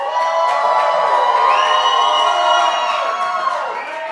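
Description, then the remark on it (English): An audience lets out a loud, sustained shout, acting out the army's shout at the city wall after the trumpet blasts, many voices yelling and whooping together for about four seconds, with some rising cries partway through before the roar eases slightly at the end. “And when you hear the sound, when you hear them sound a long blast on the trumpets, have the whole army give a loud shout.”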